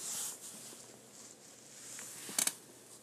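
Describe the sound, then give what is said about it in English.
Soft chewing on food, mostly a low hiss with faint mouth noises, then two quick crisp crunches close together near the end. No one speaks. “Ignore my chewing.”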